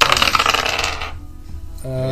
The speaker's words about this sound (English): Rolling the new dice.